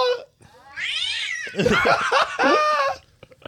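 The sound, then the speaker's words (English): A person imitates a cat with a run of drawn-out, wavering meows and yowls, loud, rising and falling in pitch over a few seconds. “is playing cat.”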